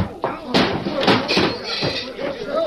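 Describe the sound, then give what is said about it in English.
A quick flurry of heavy thuds, punches to the stomach and chin landing and a man being knocked down onto the floor, amid scuffling and vocal grunts. “You knock him down.”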